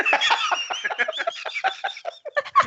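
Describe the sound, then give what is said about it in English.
A flurry of duck quacks, many short nasal calls tumbling over one another in quick succession, fairly loud, with no voices. “It's quacked up to be.”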